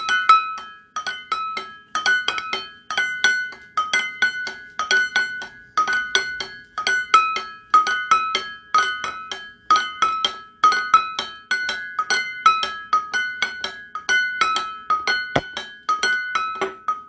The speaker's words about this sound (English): Let's just do a bells chime.